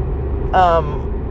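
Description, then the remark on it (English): Steady low road rumble from inside a moving car, with a brief, louder harmonic voice-like tone rising over it midway before the constant engine and tire drone continues. “Oh shit, I don't know what's going on here, but there's traffic, I don't know why.”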